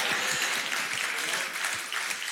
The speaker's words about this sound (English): It's so easy to clap.